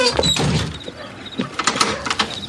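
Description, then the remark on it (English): A door is shut and locked, with a muffled thud followed by a few sharp metallic clicks and rattles from the latch and key. “Let me lock the door.”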